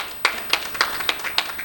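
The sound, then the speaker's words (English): A crowd claps for the speaker in a steady rhythm, sharp bright slaps landing about every quarter second with softer claps scattered between them, and no voices over the sound. “If you want to clap, if you are going to clap for me, I take those claps.”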